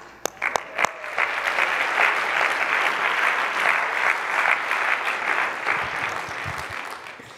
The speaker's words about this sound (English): Oh, go ahead and clap. That's why we might be a little excited to be in this building this morning.